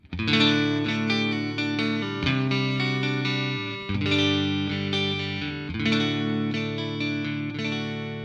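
Clean electric guitar on the neck pickup through a Fender Twin Reverb reissue amp with EQ set at 5 across and the bright switch on, playing a few full, ringing chords that sustain and overlap, struck roughly every two seconds, steady, with no one talking.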